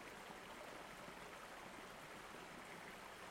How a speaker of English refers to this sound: Then they found a stream flowing into the forest and made their way inside, with Fenris walking on the banks of the water, while Aenon floated alongside.